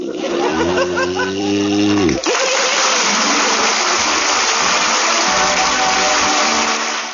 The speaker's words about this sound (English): In the meantime, I think I'll get a good night's sleep. Certainly, dear. Are you comfortable? Perfect. Just perfect. Snore to me, John.